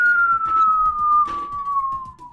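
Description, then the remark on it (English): A voice imitates a falling whistle to act out jumping off a building in a video game: one sustained, pure high tone that glides slowly downward in pitch for about two seconds, with faint rustling and soft bumps underneath. “I'm pretty sure from the falling whistle they got that.”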